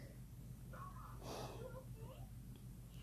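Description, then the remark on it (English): Breathy exhales push against the microphone, with one louder rushing breath near the middle over a steady low hum. No one speaks. “I'm sorry if you're hearing breathing.”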